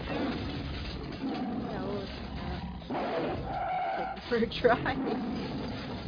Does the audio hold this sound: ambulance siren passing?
no